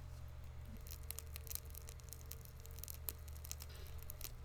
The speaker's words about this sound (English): Oh yeah, you hear that fire? Yeah. Snap, crackle, pop. Yeah, like the Rice Krispies.